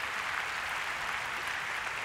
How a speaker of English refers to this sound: Oh, come on, somebody give the Lord a big clap. Hallelujah. Hallelujah.